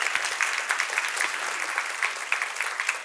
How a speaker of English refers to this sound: And she deserves an applause.